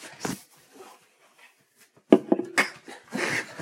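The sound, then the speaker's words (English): A dog moving around a room: a brief scuffle, a quiet stretch, then a cluster of shuffling, scraping thumps and faint breathy noises, with no one talking. “Go lie down. I'm the dog whisperer.”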